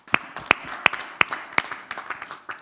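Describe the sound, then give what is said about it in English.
A group claps for Pastor Kujo in a steady rhythm, five sharp, evenly spaced claps standing out before the clapping loosens into softer, scattered hand claps. No one speaks. “Let's clap for him wherever he is.”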